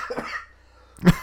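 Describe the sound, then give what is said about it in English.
Two short coughs: a softer one at first, then after a brief pause a louder, harsher bark of a cough, with no talking. “It's this dang cough.”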